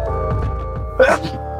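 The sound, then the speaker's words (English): A single sharp sneeze bursts out suddenly, loud and brief, over a steady low hum, with murmuring voices beforehand. “Bless you. Bless you.”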